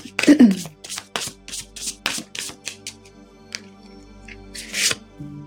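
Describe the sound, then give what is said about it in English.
Oracle cards are shuffled in a string of brisk, papery riffles and soft taps, roughly a dozen uneven bursts, before a card is drawn, over a low sustained musical drone, with a short vocal sound at the start. “So it'd be really beautiful to get their interpretation of the card that we pulled today. Yeah, let's go ahead and pull.”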